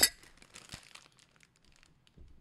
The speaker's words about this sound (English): We're doing the Dawn thing all season. Let's clink our crystal glasses of dish soap. Cheers.